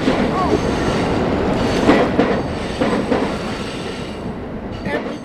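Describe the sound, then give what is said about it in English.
A train passes overhead on the St. Louis riverfront, above a man fishing with poles mounted on his truck: a steady, loud roar of wheels and rail clatter that holds throughout, with faint squeals and brief surges as the cars roll by. “with his fishing poles mounted on his truck and a train passing overhead, has a little bit of heaven right now on the St.”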